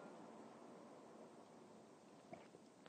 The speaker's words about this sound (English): Take a sip. It's a simultaneous sip. Go!